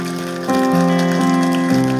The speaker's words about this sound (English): Someone give the Lord a praise, worship, clap offering. Amen.